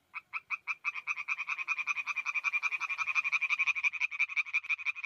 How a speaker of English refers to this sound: And in particular, he was studying a type of frog called the eastern tree frog.